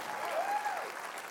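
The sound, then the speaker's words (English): An audience at a morning church worship service claps their hands for first-time guests in steady, dense applause, a continuous wash of many hands with a faint tonal hum rising and falling underneath. “Let's clap our hands for all of our first-time guests.”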